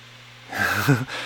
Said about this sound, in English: What's that sound? Is that the dog? I think the dog is... Oh, the dog's over here. He's snoring like crazy. I hear him.